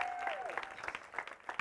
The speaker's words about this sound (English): One is I just want to welcome all of our Varsity Saints kids to the room. Can you just give them a hand clap and welcome them to the room today?